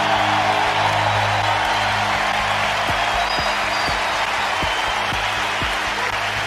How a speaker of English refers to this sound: State was 1-0 in Omaha. Let's listen to the crowd here and the team come off the bench.